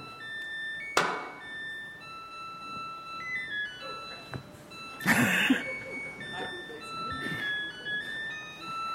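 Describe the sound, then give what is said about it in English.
A Samsung washing machine plays its end-of-cycle tune, Schubert's Trout Quintet, a bright electronic melody of clear beeping notes stepping up and down in pitch, broken by two short bursts of clattering noise. “So, whilst most machines buzz or click at the end of a wash cycle, the Samsung machines play Schubert's Trout Quintet.”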